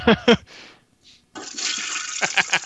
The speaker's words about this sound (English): Do you guys want to flush the toilet with me?